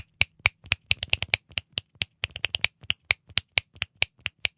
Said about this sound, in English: the real, real flamenco players, they actually snap their fingers like this